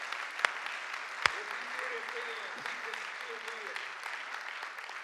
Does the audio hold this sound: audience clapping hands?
yes